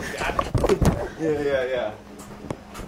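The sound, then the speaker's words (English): A door opens with a few sharp clicks and knocks from the latch and handle, while a person talks over it. “He's been open the door.”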